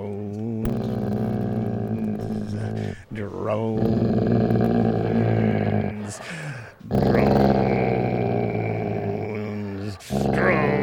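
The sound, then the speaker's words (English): Mahler the dog growls and howls in a long, wavering, tuneful drone, singing along to a theme song in sustained low-pitched phrases broken by short pauses, loud and continuous throughout. “That was lovely, Mahler. Good boy.”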